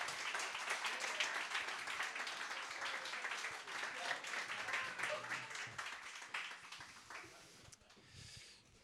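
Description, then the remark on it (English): A crowd breaks into a steady round of applause for Father Martin McGill as he is invited up on stage, many hands clapping in a dense, crackling wash that holds for several seconds before quickly dying away. “So let's give a round of applause to Father Martin McGill.”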